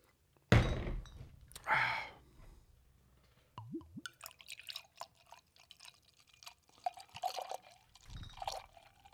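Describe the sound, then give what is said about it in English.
Two sharp knocks, then a barrel-aged Russian Imperial Stout beer glugs and splashes into a glass for several seconds, bubbling and fizzing unevenly as it fills. No one speaks. “All right, we got the beer poured out, and we never even did the fucking read.”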